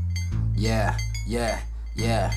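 Three loud bursts of metallic jingling, like coins shaken in a pocket, repeat at a steady rhythm over a constant low hum.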